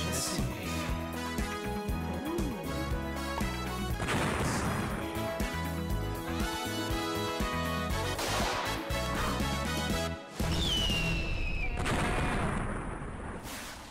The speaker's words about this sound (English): Clearly you didn't hear the explosions.